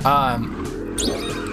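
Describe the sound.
A small video game car, a Mini Cooper, hums and whines steadily as it drives around, its pitch rising briefly at the start, with a person talking over it.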